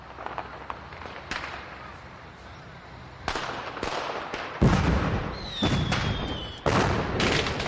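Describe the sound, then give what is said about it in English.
Fourth of July fireworks in a neighborhood at night, heard from a house, boom and crack in a rapid, irregular barrage, some bursts sharp, others softer, with a brief whistling streak rising amid the explosions. “This is some of the audio from my house.”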